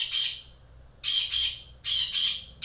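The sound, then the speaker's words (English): A pet bird squawks loudly and harshly, letting out paired bursts in quick succession with short pauses between them, with no talking. “My bird's making some noise.”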